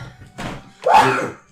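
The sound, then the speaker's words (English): A single sneeze: a short breathy lead-in followed by a loud, sharp, hissy burst that rings briefly and trails off, with no talking. “Bless you.”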